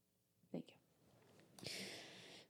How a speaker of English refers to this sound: Hey, honey. That's really those are some really violent snores. Can you tone it down just a little bit?